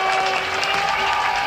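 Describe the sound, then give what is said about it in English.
A large cricket stadium crowd at the Basin Reserve roars and applauds continuously as a wicket falls and the stumps are scattered, a dense, loud wash of clapping and cheering that stays at full intensity throughout. “The crowd are telling it for you.”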